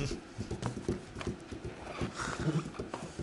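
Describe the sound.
Someone mimics a galloping horse with quick, steady clip-clop taps, moderately loud, the rhythm running unbroken for a few seconds with no talking over it.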